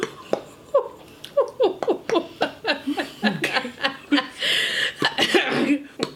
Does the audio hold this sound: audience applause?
no